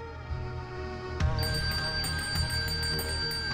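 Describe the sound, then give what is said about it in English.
A small servant's call bell rings out sharply in the darkness at night and keeps jangling with a rapid, shimmering metallic rattle over a low steady hum, fairly loud, with no voices. “My bell had rung. I sat up, terrified by the unusual sound, which seemed to go on jangling through the darkness.”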